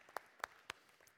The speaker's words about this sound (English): But as we do here, can we give a round of applause to everyone who served this morning in some capacity? Come on, show some love.